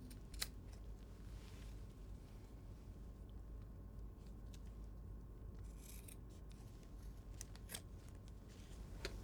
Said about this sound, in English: And then I take my scissors. And I can trim my edges.